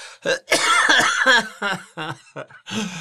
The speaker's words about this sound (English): Oh, my. Sorry, I still have a cough.